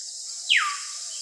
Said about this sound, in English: Oh, they got a jungle one. Let's try the jungle one. Oh, yeah. Yeah, it would go a little different. Nice. Yeah, quiet. A little. You got like birds and a little bit of wind. Yeah.